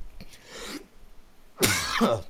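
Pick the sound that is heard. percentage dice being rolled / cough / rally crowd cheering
cough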